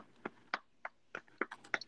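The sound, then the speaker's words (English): Crisp crunching of someone eating pork rinds, with about eight sharp bites in an uneven rhythm over two seconds and no talking. “He's just crunching.”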